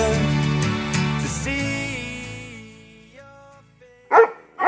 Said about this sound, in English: Woof woof.